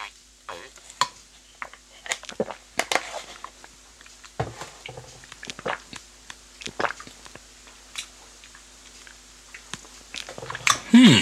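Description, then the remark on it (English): Wet slurping and gulping as someone drinks cashew nut milk straight from a carton, with irregular smacks and swallows scattered across a quiet background, louder toward the end. “But sorry for the slurping noises it goes through. It's just because I'm drinking it from the carton.”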